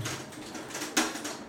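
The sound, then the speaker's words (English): Hail patters down in a steady, dense hiss of small ticks and taps, with one sharper, louder strike standing out partway through. No voices are heard. “Of you who will listen to this, it's hailing.”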